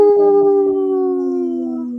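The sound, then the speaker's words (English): People on the radio show Native Roots Radio imitate a wolf howl: a loud, sustained vocal tone held for about two seconds that slowly slides downward in pitch. “Our guest didn't howl. I only heard Come two on, howls.”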